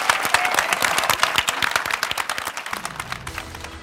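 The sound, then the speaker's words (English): A room full of people clapping steadily for a panel of speakers, a dense patter of many hands that starts to thin out near the end as a low tone rises underneath. “Please join me in a round of applause for our incredible panelists.”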